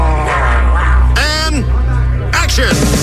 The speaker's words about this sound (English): Chickens. They're a-clucking. Other animals.